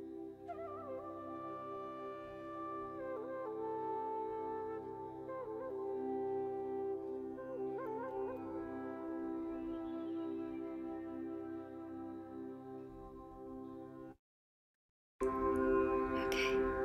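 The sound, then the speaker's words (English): Soft, steady instrumental music with sustained, layered tones and gently shifting melody plays on its own, cuts out briefly near the end, then resumes. “Let me pop on some music.”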